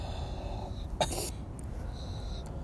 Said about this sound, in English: Yeah, I felt that shit. Yo, this is the most I've coughed in a minute, man.